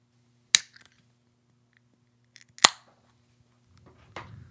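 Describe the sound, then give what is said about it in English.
A green Heineken beer can being cracked open: two sharp metallic clicks about two seconds apart, followed by a softer, hissing burst of fizz, with no talking. “I love the green can, yeah, and the star. So let's crack it open.”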